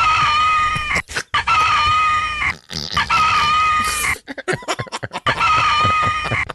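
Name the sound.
chicken clucking and crowing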